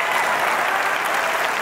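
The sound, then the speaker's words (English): Steady audience applause at a show for a man hailed as a pioneer, a dense wash of many hands clapping at a constant loud level throughout, with no voices standing out. “Let's clap it up for this pioneer.”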